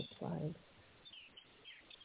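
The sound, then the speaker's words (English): Faint, high chirps from many birds in a backyard come through a narrow, phone-like line, with a brief muffled low thump near the start and no clear talking. “Yes, I'm in my backyard. There's lots of birds out here.”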